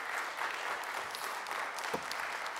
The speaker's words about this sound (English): Come on, let's give God a hand clap of praise for that on tonight.